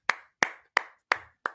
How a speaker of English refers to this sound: Clap it in, everybody. Clap it in.